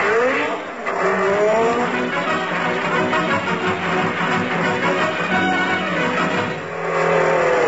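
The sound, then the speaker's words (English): A car races by at speed, its engine roaring loudly while tires squeal and skid, with whining tones sweeping upward in pitch over a dense, continuous rumble. No one speaks. “I don't know why these drunken drivers...”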